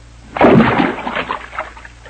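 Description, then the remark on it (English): A rock plunges into a water hole with a heavy splash, followed by a second or so of sloshing and dripping that fades away. No one speaks. “There's a water hole. What are you picking up that rock for?”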